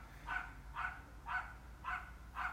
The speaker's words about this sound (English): Oh, listen to those dogs.